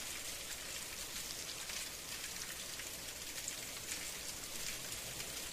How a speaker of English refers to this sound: Ah, the pitter-patter, splitter-splatter of Sunday morning. Wait, no, that's bacon, and it's spitting all over your PJs.